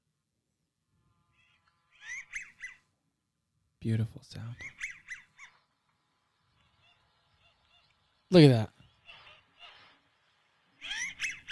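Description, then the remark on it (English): American wigeon calls played from a bird app through a small speaker: several short, wheezy whistled bursts spaced a few seconds apart, with a man speaking briefly between them. “And so like there's American Widgeon. It says it right there. You click on it. It shows the hen and the drake.”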